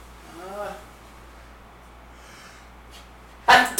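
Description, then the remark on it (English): A man sneezes once: a short voiced intake of breath, a quiet pause, then a sudden loud, explosive burst over faint room hum. “And bless you, sir.”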